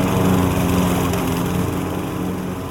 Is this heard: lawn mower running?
yes